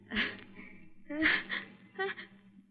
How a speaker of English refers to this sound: Gesundheit. You're not catching cold. Oh, no. It's the sun. It always does that to me. I always sneeze exactly twice, and then I'm all through.